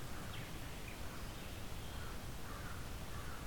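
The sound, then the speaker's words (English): Several crows caw faintly in the distance, their harsh calls scattered irregularly over a steady outdoor background hiss, with no talking. “A lot of crows in the distance.”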